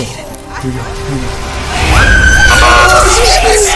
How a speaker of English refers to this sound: Here we go. Your girl screamed. Hey, she tried her best.